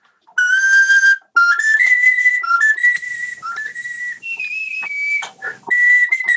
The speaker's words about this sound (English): Yeah, when you were in the bathroom, it was explained that it's not a melodica. Oh, so it's actually, you know, keyboard ocarina.